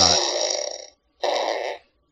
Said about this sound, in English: That's a fart. Thank you. I was slow on the sound box.